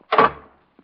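A door swings with a short, fairly loud creaking rush that fades out, followed a moment later by a soft click as it shuts. No voices are heard.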